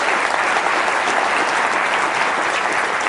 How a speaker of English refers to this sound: Okay, give them a round of applause as they come up.